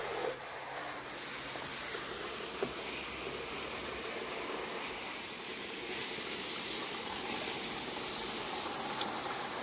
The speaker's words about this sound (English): Yeah, it's nice watering these plants.